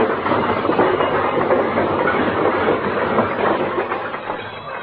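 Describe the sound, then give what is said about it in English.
Fibber McGee's overstuffed closet spills open as its door is opened, a sound effect in a long, unbroken avalanche of clattering, rattling junk, loud and dense for several seconds before easing slightly at the very end, with no voices. “When Fibber rushes to open that closet door, look out!”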